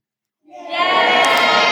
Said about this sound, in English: But what we're going to do is when I do this, everyone can cheer, yay. And when I do that, you've got to stop instantly, okay? Do you reckon you can do that? Okay, adults as well, let's see if you can do this.